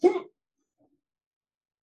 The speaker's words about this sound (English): And I have hiccups, so that's going to be a great way to... That'll liven up this conversation a little bit.